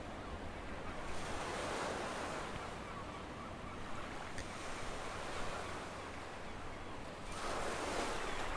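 Ocean waves wash onto the shore in steady, full-bodied surges, with one swell building early and another rolling in near the end, over a constant windy hiss. No voices.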